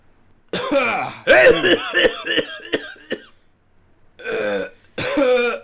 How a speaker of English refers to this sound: We got to warm up the voice. You ready to warm up the voice? Okay, it's hot already. Give us a good cough.